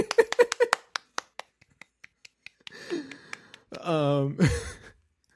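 A quick run of sharp hand claps, fast and loud at first, then slowing and thinning out, followed by wordless vocal sounds like a drawn-out cheer and sigh.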